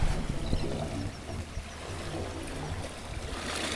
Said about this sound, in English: All right. Some good wave organ sounds. Yeah, I love it.